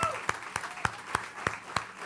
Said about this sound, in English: Give the dads a big round of applause.